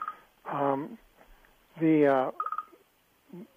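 A mobile phone unexpectedly left on sounds its tones: two longer, warbling electronic bursts followed by a quick run of four short beeps, fairly clear, with brief quiet gaps between them.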